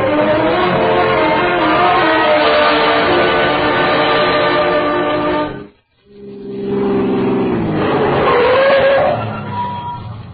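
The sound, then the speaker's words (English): A car engine is started, roars loudly and steadily, cuts out for a moment, then restarts and revs upward as the car speeds off, with no voices. “Run down and get the car started.”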